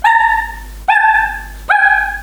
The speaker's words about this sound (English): She just has the most annoying bark, and it's not like a normal bark. But it's like... It's like...